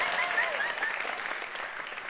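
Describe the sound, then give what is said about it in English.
Audience applause fills the whole moment, a dense, steady wash of many hands clapping at an even, fairly loud level, with a few faint whistles riding on top early on. “Well, listen, go ahead and applaud.”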